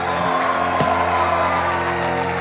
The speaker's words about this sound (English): Give them a big hand clap. Give Jesus a bigger hand clap.